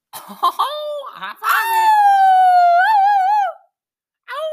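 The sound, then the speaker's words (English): A few short, sharp barks break out, then give way to one long, loud howl that wavers in pitch before cutting off. After a brief silence, another bark begins. “Gonna get a bark for my dogs in chat.”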